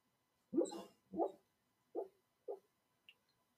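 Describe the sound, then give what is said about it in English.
A male dog, dreaming in his sleep, lets out four soft, muffled woofs and whimpers at uneven intervals, trailing off into a faint short squeak at the end, with no talking. “I don't know what he's dreaming about, but he's dreaming.”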